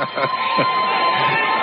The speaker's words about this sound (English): Some of the crowd booing, some of the crowd cheering. Wonder which is which.